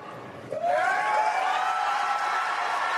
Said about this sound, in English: That cheering is because almost everyone on the stage raised their hands.